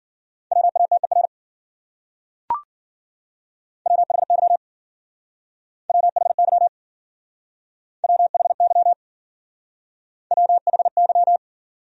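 Rapid Morse code at 40 words per minute: a steady, fairly high beeping tone keyed in fast dots and dashes, sent in five short bursts with pauses between, plus one sharp click early on.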